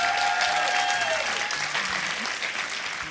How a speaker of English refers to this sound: A round of applause